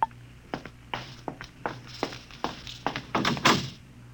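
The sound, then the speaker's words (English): A door signal at Professor Lois Burton's door sounds as a rapid, irregular series of sharp knocks and thunks, moderately loud, with no voices over it. “Oh, there's my door signal.”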